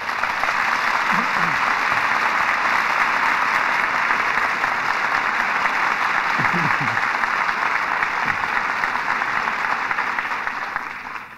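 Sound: studio audience applause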